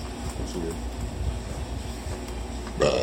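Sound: burp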